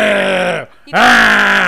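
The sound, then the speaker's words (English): A voice imitates the growl a baby boy makes when touched or bumped: two gravelly, strained vocal grunts separated by a brief pause, the second rising sharply and slightly louder than the first. “He growls. He's like a gremlin.”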